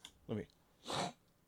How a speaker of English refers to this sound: Let me sniff those seasonal allergies off mic as best as I could.